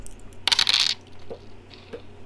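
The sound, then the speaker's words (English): Dice clatter across a table in a quick, bright burst of rattling clicks, then a few softer ticks as they settle, rolled to heal a character in a game. Fairly loud, with no talking. “Come on, Dice. Don't fail me now.”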